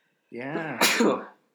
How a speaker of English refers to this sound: Yeah. Sneezed. Wow. Bless you. Thank you. Thanks for doing that on air.